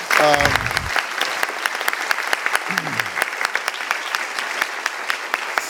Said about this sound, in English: Way too long of applause. No one knows who this lady is.